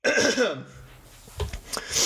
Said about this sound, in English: I'm going to cough really quick.